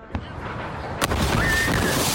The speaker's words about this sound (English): smoke has cleared, but people are still rattled by that massive fireworks explosion in a private home. 2 people were killed. Authorities now say it was commercial-grade explosives, but what on earth was it doing in a private home?